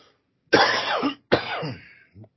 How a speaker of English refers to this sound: So I'm gonna try to mute the coughs the best I can. Yeah, but it's all messed up, man. It's I got sick over the weekend. Pretty sure flu.